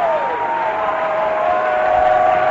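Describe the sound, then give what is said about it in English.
An audience in a church sanctuary claps and cheers in a continuous, dense wash of sound that stays loud and steady throughout, with a sustained held tone running beneath the clapping. “If you will lift your hands again, if you will clap your hands one more time, if you will let your voice out, the Holy Ghost.”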